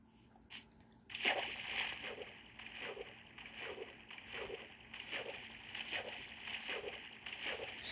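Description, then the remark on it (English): Video game water splashing in a steady, repeating rhythm as the player's character crosses the water, with soft sloshes following one another at moderate volume and no talking. “Now it's time to just cross the water.”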